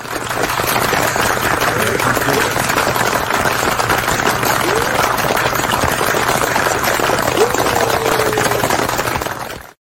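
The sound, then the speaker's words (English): An audience applauds as a guest is welcomed for a debut on the show, a dense, steady wash of clapping that holds at a loud, even level for nearly ten seconds, then cuts off abruptly. No one speaks over it. “I could see you during the applause, like bowing, like, but it's like nobody can even see you.”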